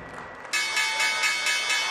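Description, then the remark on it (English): A loud Wall Street stock exchange closing bell starts abruptly about halfway in and rings continuously, a bright metallic clangor with a slight pulsing rhythm, preceded by a quieter murmur of background noise. “The closing bell ended a bloodbath on Wall Street.”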